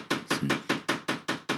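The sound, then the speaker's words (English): Brittle shatter being crushed with a steady run of about seven sharp, crackly crunches in quick succession, each a bright, gritty hit that fades before the next, with no voices. “So here's some background noise. It's just crunching, so just bear with us.”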